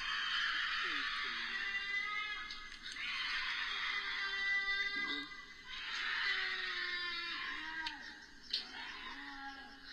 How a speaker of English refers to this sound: So when you hear that, you think, holy crap, it sounds like an old person screaming, but toward the end, it starts to sound like a meow. So I think it's a cougar. Like, cougar and mountain lion are the same thing.